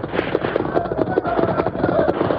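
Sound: gunfire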